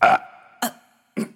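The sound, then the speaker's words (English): Three short burps in quick succession, each an abrupt, fairly loud croak that fades with a faint lingering tone before the next one comes, with no talking; the character Comrade Buttonface burping after drinking an entire bottle of buttermilk. “And gulp after gulp, Comrade Buttonface drank that entire bottle down and let out a very modest burp.”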